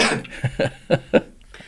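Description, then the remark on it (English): A fit of coughing after a hit from a nicotine vape: a harsh opening burst followed by four short, rough coughs in a quick, uneven rhythm, fairly loud with no talking over them. “Sorry, you said it like right when I was getting ready to cough.”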